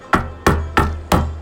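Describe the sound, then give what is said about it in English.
Four firm knocks on the wooden door of Azador Owen's very tall, pointed abode at the edge of town, evenly spaced about a third of a second apart, each a sharp hollow thud with a short resonant ring and no voices. “And after not even 2 seconds of knocking, as your hand just lifts away from the door, it swings inward.”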